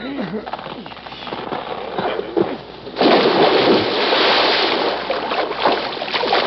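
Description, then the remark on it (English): A truck, shoved by two men, plunges into water with a loud splash, followed by sustained churning and rushing water as it sinks. A voice talks during the moments before the splash. “As the truck submerges, the two men climb into the waiting car, which is being driven by a woman.”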